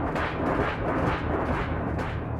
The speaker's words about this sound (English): And then, I started to hear the metal garage door being shaken violently.